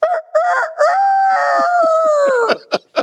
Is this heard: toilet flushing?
no